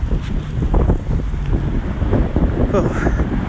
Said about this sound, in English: It's really windy out here, so that's where a lot of this audio is coming from.